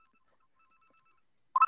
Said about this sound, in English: Someone's phone's ringing, bro. Someone's leaving a business call.